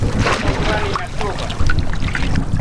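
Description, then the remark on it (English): Boats of island natives moving through water, with a steady wash of splashing and wind noise throughout and faint voices underneath. “Boats! They look like island natives.”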